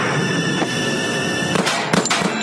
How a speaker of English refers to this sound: It happens that fast. I hear something shooting like firecrackers. I thought it was kids. I was going to yell at them. But when I see this guy pointing in the car, and I says, oh, that's the car my grandson got in.